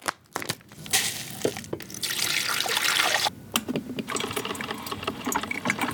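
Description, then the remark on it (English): An old Mr. Coffee drip coffee maker in an office kitchen gurgles and hisses as it brews coffee, a steady bubbling trickle of water with sputtering pops and a few sharp clicks, no voices over it. “I found an old Mr. Coffee machine in our office kitchen, and we did the thing.”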